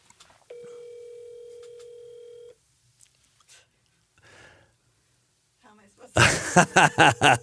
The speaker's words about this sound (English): She's here in the room right now. I'm calling her phone anyway.